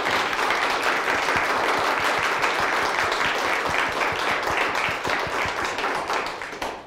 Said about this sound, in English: deserves a huge round of applause for doing these.